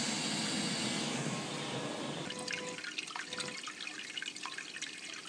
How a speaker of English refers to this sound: You hear that strain? And that flow of water.